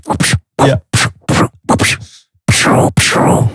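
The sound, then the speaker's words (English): A voice imitates helicopter minigun fire: a rapid run of sharp, breathy bursts, then two longer sustained rattling blasts, loud, with no talking. “Gun sounds. I bet that's what Sunset Rider sounds like. Minigun on a helicopter.”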